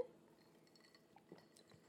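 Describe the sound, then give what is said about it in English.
Bottles of Jarritos lime-flavored Mexican soda clink together in a toast, a couple of light, bright glassy taps, fairly quiet, with no talking. “Cheers. That'll pick up well on audio.”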